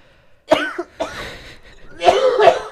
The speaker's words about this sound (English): I literally wasn't even drinking anything, and I just started coughing.